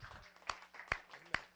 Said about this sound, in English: Would you stand to your feet with me? And if you love Jesus, will you give him a hand clap of praise? Amen.